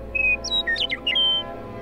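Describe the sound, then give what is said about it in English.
A bird chirps and whistles in a quick run of bright, high notes, some sliding and some held, over about a second and a half. Clear, no voices. “But before they could even start to worry about that, they heard a chirp.”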